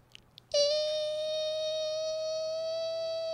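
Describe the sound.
A voice imitates a mosquito: after a brief moment of quiet, a loud, steady, high-pitched nasal whine starts and holds a single unbroken pitch for about three seconds.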